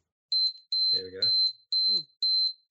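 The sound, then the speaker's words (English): A 60-minute wind-up timer, set by turning a knob, goes off as its countdown reaches zero, sounding shrill, high beeps in quick repeating bursts, while a voice briefly speaks over it partway through. “And it'll count down back to zero, and at zero it'll go off. So you hear it.”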